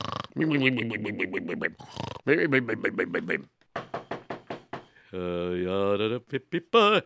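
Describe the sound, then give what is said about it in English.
A voice, someone pretending to be asleep, loudly imitates snoring with a run of rough, rhythmic grunting snorts and rasping drawn-out breaths, the bursts coming in quick pulsing clusters across several seconds. “What's that I hear snoring?”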